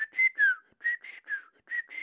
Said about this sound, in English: Okay, so that would be the dolphin whistling its own signature whistle three times.